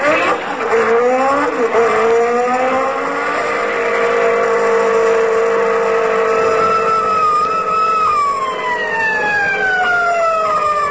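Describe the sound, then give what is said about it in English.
A car speeds past at 42 miles an hour in a 20-mile zone, its engine roaring loudly and continuously, the whining pitch climbing and then sliding downward near the end. No one speaks. “42 miles an hour in a 20-mile zone.”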